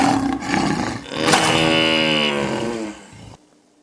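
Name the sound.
lion roaring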